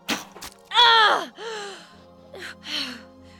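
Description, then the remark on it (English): A quick sharp impact of an arrow striking, then a woman's loud, strained gasp followed by a few shorter breathy gasps and groans, alone with no talk. “The Amazon sank to her knees, gasping in disbelief.”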